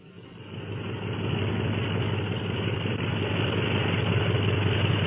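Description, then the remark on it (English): Engines of planes, led by a black and silver plane, drone as they taxi out of a secret hangar for takeoff, swelling over the first second into a steady, rough low rumble that holds without a break. No voices are heard. “Those planes will be taxiing out for a takeoff at any minute.”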